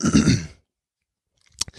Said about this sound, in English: excuse me for clearing my throat, but whatever.